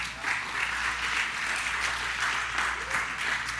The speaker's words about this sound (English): So he was a man of faith and he was used by God, so we can give him a clap for that, amen?